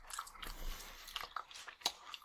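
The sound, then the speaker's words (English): Quiet chewing of gum, with wet smacking and soft clicking mouth sounds repeating irregularly over a couple of seconds. No one speaks. “So that's what your mouth smells like right now. Gum.”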